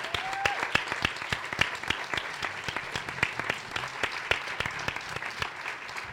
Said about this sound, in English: So let's give Sean Harding a round of applause.